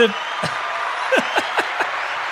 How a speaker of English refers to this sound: I got the combo there. The wow and the cheer.